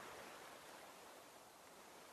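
Steady rushing of a clear creek tumbling over hundreds of smooth rocks and a few small boulders down a hill beneath a small wooden bridge, a continuous hiss-like wash with no breaks, fairly soft and even throughout, with no voices.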